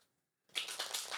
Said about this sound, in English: So just take a moment and connect to the cards just by listening to them being shuffled. We're using a really magical deck today. This is Rachel Pollack's deck called the Shining Tribe Tarot.